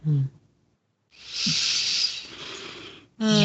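Two people take a long, airy breath, deep and steady, rushing for about two seconds between brief bits of speech at the start and end, fairly loud.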